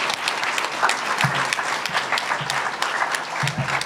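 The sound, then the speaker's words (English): A panel-discussion audience applauds itself steadily for participating, many hands clapping in a dense, sustained patter of sharp claps with no voices rising above it. “Give yourselves a round of applause for participating in that.”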